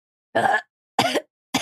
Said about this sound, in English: Are you okay? Oh, no. That are looked you like a harsh ass blunt. Ooh. You did a Popeye cough of it like was so the... good.